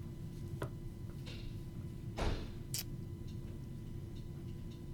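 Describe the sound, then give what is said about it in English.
A door thuds shut at a distance, a short muffled bang followed by a sharp click, with a few faint taps scattered before it over a low steady hum. No one speaks. “Door dramatically closes in the background.”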